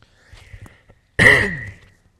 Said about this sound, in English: I do have a bit of a cough. I'm going to try not to cough into the microphone too much during my sermon, but bear with me.